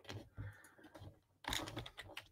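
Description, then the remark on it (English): Rapid computer keyboard typing as someone types in the Lakers: a run of quick clicky keystrokes at an uneven rhythm, with a brief pause before a denser burst of taps. No one speaks over it. “I'll type in the Lakers.”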